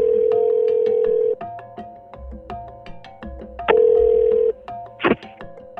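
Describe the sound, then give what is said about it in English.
A telephone ringing tone purrs twice through a phone line, each long steady ring followed by a pause, with faint line clicks and hum in between and a sharp click near the end. “She was being nice and cordial, and we set a time for a phone call.”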